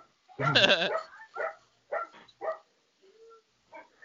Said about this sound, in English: I apologize. He's totally in the other room and my door is closed. It's all right. We're used to dogs barking on my shows.